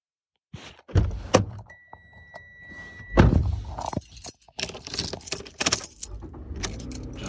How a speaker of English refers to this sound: Now we're in Greg's car driving down the road. Greg's driving and got the tunes down low, and we're looking out to find this first gal out walking around.